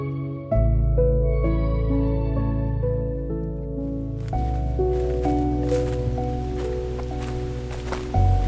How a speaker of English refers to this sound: Of course, just as the wind is picking up, that's when I hear the blackburnian warblers.